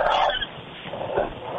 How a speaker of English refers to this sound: Oh, yeah. No, the frogs are still going. I'm going to let those go for a while.